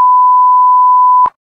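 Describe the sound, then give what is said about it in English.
A loud, steady censor beep holds one pure tone for over a second, cuts off abruptly with a click, and a faint voice fragment follows after a brief silence. “Well, that part's definitely beeped out.”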